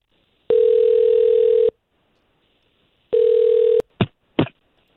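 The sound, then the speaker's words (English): A telephone ringback tone buzzes twice over the line, each long steady ring followed by a pause, then two short clicks as the call is picked up. No one speaks. Hosts of radio station K92.3 are calling a man's phone number. “We'll try to call him right now.”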